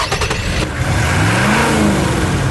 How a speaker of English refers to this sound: It's our biggest, baddest, most capable pickup truck that sports a beefy 317 horsepower from a massive V8 engine, complete with a one-ton payload and up to a hardcore 9,500 pounds of towing capability